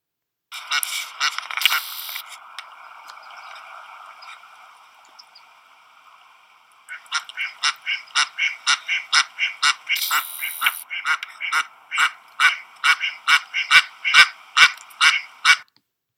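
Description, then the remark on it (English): Ducks calling while swimming on a river: a long, buzzy, nasal call drawn out for several seconds, then a steady run of about twenty loud, evenly spaced honking quacks with no voices. “This duck also waddles down the boat launch ramp to go swimming.”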